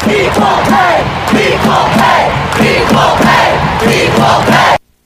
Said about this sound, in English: And then when the women of the world of the U.S. national team won, you had a moment where the crowd started chanting the following.